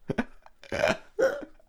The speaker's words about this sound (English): I burped as I said Jetstream. Jetstream!